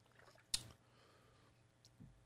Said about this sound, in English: This one's fun, and I got to take a sip here because it's going to involve me some word reading here